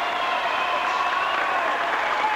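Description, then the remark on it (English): A large stadium crowd roars and cheers steadily as Joan Benoit emerges from the tunnel as winner of the first Olympic Women's Marathon, a dense wash of voices and applause holding at a loud, even level throughout with no pauses. “She'll come through that tunnel and listen to the crowd as she emerges.”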